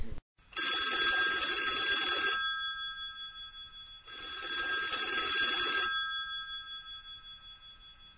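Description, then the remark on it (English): A telephone rings twice with an old-style bell, each ring a bright metallic trill lasting about two seconds, separated by a short pause. Fairly loud, with no voices. “Considering our phone lines are apparently crossed, let's see if we can tap into this person's line. Hello, this is Nate. I believe I was just called.”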